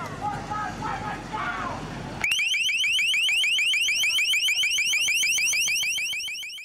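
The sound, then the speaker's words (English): Crowd noise and voices at a protest at the G20 summit in Pittsburgh give way abruptly to the city police department's LRAD sound cannon blaring a piercing, high-pitched warbling tone that pulses rapidly and holds loud and steady until the end. “Protests occurred at the G20 summit in Pittsburgh, and the city's police department put their sound cannon to use, as you can hear in this recording shared on YouTube by the Glass Bead Collective.”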